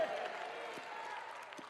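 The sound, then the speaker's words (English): An audience in Fort Worth claps and shouts praise to God together in a steady, dense wash of crowd noise, with scattered louder claps and cheering voices blending throughout the brief burst. “If you receive that tonight, clap those anointed hands. Give God a mighty shout tonight in Fort Worth, wherever you're watching in the world.”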